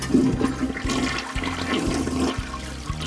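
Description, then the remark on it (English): A toilet flushes with a loud, steady rushing whoosh of water that carries on for about three seconds, with a low churning rumble underneath and no voices. “To my mind, it's like the whoosh of the toilet as you flush almost serves as a mind eraser.”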